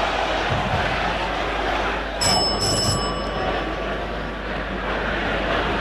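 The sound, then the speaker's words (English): A quiz buzzer bell rings in two quick, bright bursts midway, signalling that time is up, its tone lingering briefly before fading beneath a steady murmur of room noise. “The bell had gone.”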